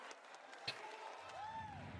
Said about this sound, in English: This is a loud crowd. I don't like them. They're just all yelling.